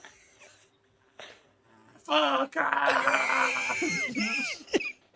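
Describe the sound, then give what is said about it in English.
A voice lets out a loud, strained, angry scream imitating a person falling after their parachute fails to open, lasting a couple of seconds with a wavering, bending pitch, preceded by quiet and ending abruptly. “That's why I'm laughing so hard, because I've just imagined the parachute not opening, and you just hear you and that scream just, ah. Just fucking just angry the whole way down.”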